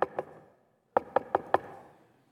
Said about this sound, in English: Probably a series of knocking. I mean, we've been to houses, and maybe the doorbell wasn't working.